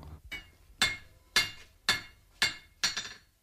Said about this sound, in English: The sound of John Behan, the sculptor, working with hammer and anvil in his Dublin art foundry.